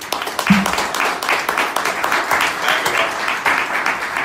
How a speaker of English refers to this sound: That applause is going across the Atlantic to you right now.